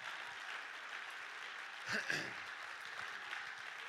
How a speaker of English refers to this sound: Let's clap our hands and thank the Lord together.